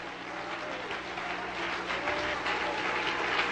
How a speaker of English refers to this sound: Come on, let's clap our hands and praise him.